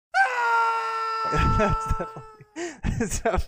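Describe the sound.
A loud, sustained scream from a single man's voice over the phone holds for about two seconds, then breaks into short, choppy vocal bursts and brief shouts toward the end.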